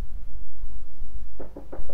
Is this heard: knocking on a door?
yes